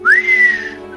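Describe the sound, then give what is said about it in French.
A single clear mouth whistle rising quickly in pitch and then holding steady before fading, like an impressed or surprised reaction, fairly loud with no talking, made as a character leans back to take in the news. “Zarsinda se laisse aller un petit peu en arrière avec un sifflement, enfin pour accuser le coup, quoi.”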